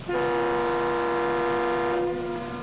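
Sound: siren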